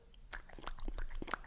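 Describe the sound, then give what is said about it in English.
Wet, smacking mouth noises come in a quick, irregular run of about half a dozen sloppy bursts, much like a dog lapping water. They are fairly soft, with no talking. “That sounds like my dog drinking water.”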